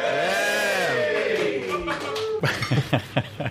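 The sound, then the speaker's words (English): A live audience makes noise: voices hold a long, rising-and-falling cheer, then give way to a ragged patter of claps and chuckles for the last second. “I should mention, first of all, that the crowd are still here.”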